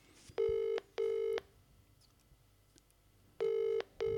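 A phone call ringing out over a speakerphone: two pairs of short, buzzy double-burst ring tones with a quiet pause between them, clear and fairly loud, with no one talking.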